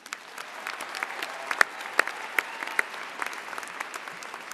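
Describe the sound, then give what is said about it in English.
Applause from the graduating class of 2018 at a commencement ceremony, applauding themselves: a dense, steady wash of clapping with a few sharper individual claps standing out, for several seconds. “Let's take a moment and give ourselves a round of applause.”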